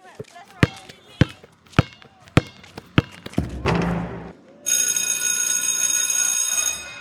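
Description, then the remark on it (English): A basketball is dribbled on a school basketball court, bouncing five times in a steady rhythm, then after a brief rustle a loud electric school morning bell rings continuously for the last couple of seconds. “He began a quick game of basketball before the morning bell.”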